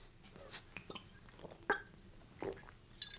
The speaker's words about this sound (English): Oh, no. Oh, that was too much. My cup overfloweth.